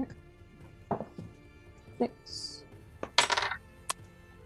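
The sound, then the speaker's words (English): Dice clatter across a hard tabletop in a few quick, uneven bursts of tapping and rattling, fairly crisp, with a brief louder tumble near the end and faint voices in the background; the roll comes up a 4. “I got my dice. That's a 4.”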